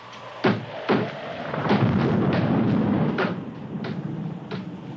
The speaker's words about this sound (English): That ain't nothing, just something bumping against the house. Just the wind banging a door. Pay no attention to it.